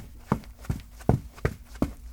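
Quick footsteps hurry across a hard floor, five sharp thumping strides in an uneven running rhythm, moderately loud, with no voices; someone running over to help a person who has fallen.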